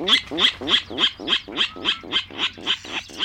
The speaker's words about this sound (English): Nearly one quarter of U.S. birds, such as this Virginia rail, rely on freshwater wetlands.